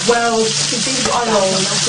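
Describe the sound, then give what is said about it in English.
Steady hiss and crackle of a bread slice frying in hot fat in a pan, continuous throughout, with a voice briefly murmuring over the sizzle. “Ooh, I'm just to let you I'm know, having a fried slice now, I'm tonight. I haven't been showing you, but I've been putting a bit of fat in every time.”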